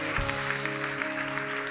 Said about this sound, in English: Come on, give the Lord a big clap. Come on, give the Lord a big shout in this place.